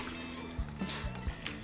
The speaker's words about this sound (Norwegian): Da tar vi iskaldt vann. Hvor mye var det igjen av det? Det er 3 dl. Supert. 3 dl vann, iskaldt vann.